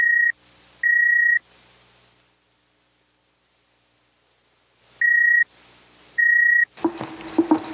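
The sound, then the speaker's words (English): Two pairs of bright electronic beeps from a beamer, a small handheld device used in the movie to signal Robbie the Robot, each pair separated by a few seconds of near silence, over faint hiss, followed by a burst of mechanical noise. “In the movie, they signaled Robbie the Robot with a beamer, a little handheld device that beeped.”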